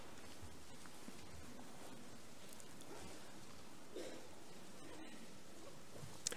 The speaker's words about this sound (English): The sound of all those scripture pages rustling is the sweetest sound in the world, next only to the squawking of a little baby.